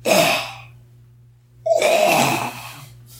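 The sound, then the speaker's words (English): A person imitates a cat hacking up a furball: two harsh, raspy, gagging bursts, the second longer and wetter-sounding, over a faint steady hum. “Not unlike the sound a cat would make when coughing up a furball.”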